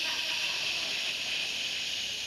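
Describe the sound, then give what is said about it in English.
A voice imitates water from a refrigerator's automatic dispenser pouring over as it overfills, a steady, unbroken high-pitched "shhh" hiss held at an even loudness for a couple of seconds with no other talk. “an automatic dispensing of water from your refrigerator”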